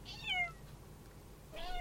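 A cat meows twice, a short rising-falling cry followed by a second after a pause, clear over a low background hum.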